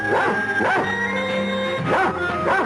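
A dog barks in two quick pairs of bright, yippy barks separated by a short pause, loud, over a steady sustained musical tone.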